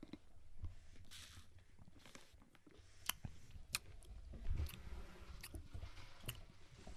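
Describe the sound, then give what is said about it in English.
Quiet sipping of Baja Blast soda from a cup, with soft wet slurps and small liquid clicks scattered irregularly over a low background hum, no talking. “This one is just in a cup, so you're just going to hear me sip.”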